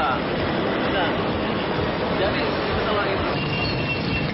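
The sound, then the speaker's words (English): A loud, continuous roar of rushing water as a tsunami's colossal volume of seawater surges into the city of Banda Aceh at over 700 kilometers an hour, steady and dense throughout with indistinct voices buried in the din. “A colossal volume of water rushed toward Banda Aceh with the speed of a jet plane at over 700 kilometers an hour.”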